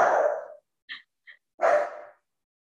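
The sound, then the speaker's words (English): Two loud dog barks separated by a pause, with a couple of brief, quieter yips or huffs in between. No one is talking. “But it was like, I knew, hey, why are my dogs barking?”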